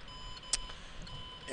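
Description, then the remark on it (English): A car's driver-assist warning sounds as a thin, steady electronic tone over low engine rumble, with a brief sharp click partway through. “What is that? What are you beeping now?”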